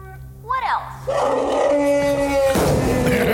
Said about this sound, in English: Actually, that was Tiny the Elephant, part of the Noah's Ark display.